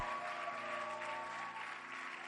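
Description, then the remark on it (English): An audience at a church service claps together in a dense, steady round of applause that fills the whole room, with a faint sustained musical tone humming underneath. “Put your hands together for them.”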